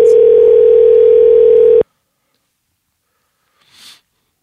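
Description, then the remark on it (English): A loud, steady telephone dial tone drones for nearly two seconds as a call is placed to a friend, then cuts off abruptly, followed by silence and then a brief, soft breathy sniff near the end. “So now it's time for a segment of the podcast called Phone a Friend, where we do just that. Phone a friend.”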